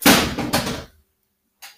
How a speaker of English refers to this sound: Technical difficulties. Party foul. This nigga just knocked out my whole equipment as he has on his goddamn snow blowing.